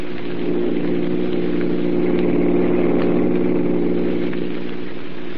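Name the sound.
car engine running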